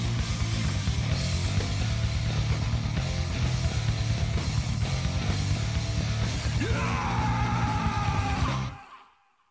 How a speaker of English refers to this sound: Love that scream at the end. It was hard. Sweet. I think we had a hard time getting it.